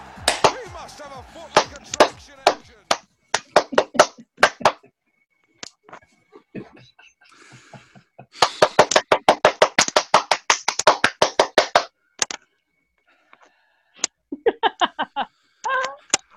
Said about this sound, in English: Okay, we're live. I'll give it a clap and we'll begin.